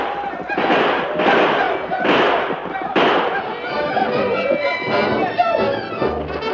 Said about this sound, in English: The Indians charged toward the barricade, yelling and screaming, their rifles spitting death, but the four men drove them back.